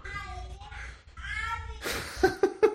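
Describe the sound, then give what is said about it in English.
Children crying in high, wavering wails with strong harmonics, a couple of drawn-out cries, then a noisy stretch ending in three short, sharp sobbing bursts. “I just hear kids crying in the background.”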